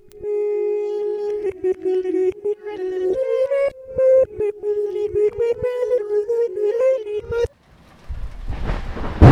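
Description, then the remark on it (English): A melodic tune plays for several seconds, then cuts off as a loud rush of storm noise at sea takes over: heavy rain and a rumble of thunder, building at the end. “God, was that lightning?”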